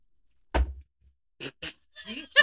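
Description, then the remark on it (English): A single heavy thud as a woman slams her drink down hard on a table, loud, followed by a few quiet moments and then people beginning to talk. “she just slammed her drink down.”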